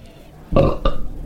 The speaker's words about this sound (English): We'll be rating and discussing these ciders and rating them along with these suds ratings and our signature belching sounds.